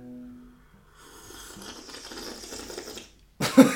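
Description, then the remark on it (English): A voice mimics a creaky, rusty water pipe with a low hum, then a sputtering, rattly gurgle that grinds on for a few seconds before a loud breathy burst at the end. “I'm a water pipe.”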